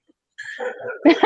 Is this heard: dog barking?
yes